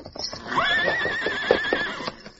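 A horse neighs in a long, high whinny that wavers steadily before trailing off, with faint clip-clopping hooves and rustling underneath. No one speaks.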